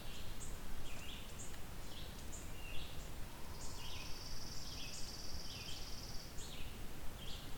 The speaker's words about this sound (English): That one I could go either way with. That would be chipping or pine warbler.